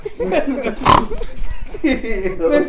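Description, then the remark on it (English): A man's voice imitates a pig, making a run of nasal, snorting oinks and grunts over a few seconds, loud, with a sharper squeal-like burst partway through. “Babe the Pig sound. I fucking tried.”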